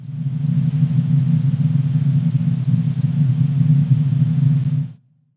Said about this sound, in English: Is that an airplane sound inside of an airplane? It's white noise. This one's kind of unfair because it's a sound that doesn't actually exist in nature.